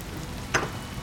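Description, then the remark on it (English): Steady, even hiss of rain falling, with one brief sharper splash or tap partway through; no voices. “Just get out of the rain.”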